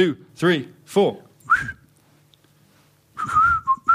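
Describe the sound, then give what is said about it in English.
Someone whistles a short, wavering tune in brief phrases, moderately loud, after a few vocal sounds at the start and a quiet pause, trying to whistle a tune right after a band has played it. “How about the band play it and then we try to whistle it after it, immediately after?”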